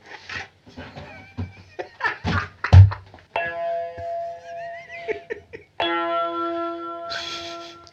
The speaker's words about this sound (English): he's purchased himself a £10 keyboard. Oh, yeah. So he can now do the death gongs.